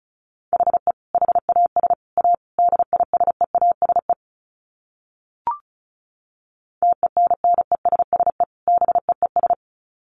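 Fast Morse code at 35 words per minute: a steady mid-pitched tone keyed into rapid dots and dashes, in two runs separated by a pause broken only by a single short click.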